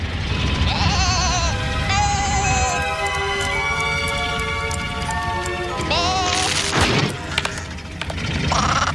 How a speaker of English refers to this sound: This was the third Wallace and Gromit film, but the very first time we met, drumroll please, Shaun the Sheep. Bah.